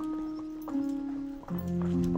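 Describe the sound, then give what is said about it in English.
Horse hooves clop at a steady walking pace beneath sustained, evenly pitched tones that shift downward partway through. “Not to mention, he's a talented horse rider.”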